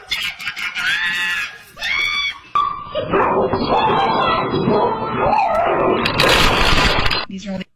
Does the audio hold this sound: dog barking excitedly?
yes